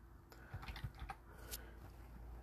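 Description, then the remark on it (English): A short burst of typing on a computer keyboard as someone looks up sports championship totals: several quick, light clacks of keys, fairly quiet, over a steady low background hum with no one speaking. “Let me double check here. I'm typing it in. Maybe you can hear me typing.”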